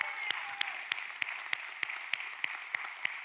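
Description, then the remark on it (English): An audience applauds its elders steadily in a dense, continuous wash of clapping, with sharper in-unison claps standing out at a regular beat of about three per second throughout. “Let's give our elders a great big round of applause.”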